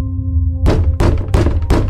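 Four heavy, evenly spaced knocks on a door break in after a low steady hum, each a loud dull thud with a booming low rumble beneath.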